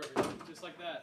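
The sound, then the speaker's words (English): A person tries the handle of a locked door, rattling it, with a knock-like clunk at the start and another sharp thud at the end as the door gives way. Faint voices murmur in the background. “I think that door's locked as well. It is. He just tried it”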